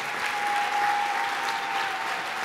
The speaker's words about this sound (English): So let's clap hands for her one more time.